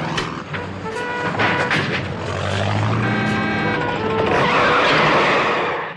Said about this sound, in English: His proudest moment was sliding the Jag into the gap right in front of the gates. A couple of rehearsals, and then straight on his mark in one take.